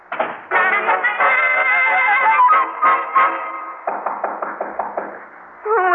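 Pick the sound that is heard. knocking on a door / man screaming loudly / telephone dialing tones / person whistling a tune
knocking on a door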